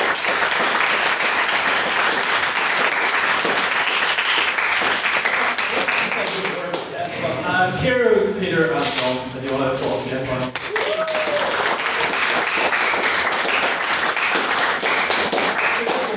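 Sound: audience round of applause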